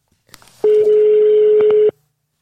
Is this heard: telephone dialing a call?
yes